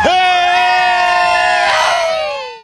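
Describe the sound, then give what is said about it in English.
A loud outdoor concert crowd lets out one long, sustained cheer, voices swelling together in a held shout before trailing off at the very end. “Well, I'm walking through the crowd here, and I see some more people here on a blanket.”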